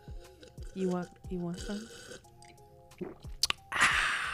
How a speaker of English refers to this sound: I was thinking about getting Moscato right now. Actually, I'm having a sip as we talk.